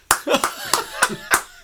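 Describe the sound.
A single person claps about six times in a steady, evenly spaced rhythm, each clap a sharp, loud smack, while voices murmur faintly underneath between the claps.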